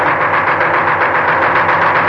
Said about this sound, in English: Who was that? German plane attacking? No, that's just a Spitfire. Gunnery practice. See, you can see the plane ahead of him towing the target sleeve.